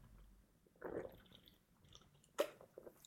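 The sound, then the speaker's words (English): A quiet sip of Diet Coke: a soft slurping draw of liquid, then a sharp little gulp or mouth click a moment later, with nobody speaking. “But geez, when you sit down to record on a warm spring afternoon, doesn't it feel great to have a delicious sip of Diet Coke?”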